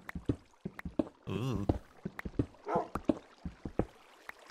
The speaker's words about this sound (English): Uh-oh, I hear flowing water. Are we near a cave? This could be dangerous. Spooky noises. I think we are, actually.